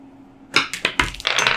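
The Azog dice are rolled for a persuasion check in a tabletop game, landing a 24: they roll and clatter across a hard surface, a quick burst of sharp, bright clicks and rattles, four or five distinct knocks ending in a brief jumble, with no voices.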